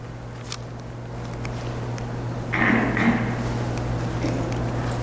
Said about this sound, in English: Did you just clear your throat? Comic relief.